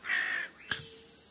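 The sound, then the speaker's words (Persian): A crow gives one loud, harsh caw lasting under half a second, followed by a brief sharp knock and a quieter rasp fading out. “کلاغ هیله کرانه گفت، هیله گرانه، البته که میتونی.”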